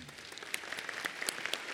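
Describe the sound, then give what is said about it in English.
A crowd applauds, a dense steady patter of many hands clapping with scattered sharper claps standing out, sustained at moderate loudness and no voices over it. “I applaud you.”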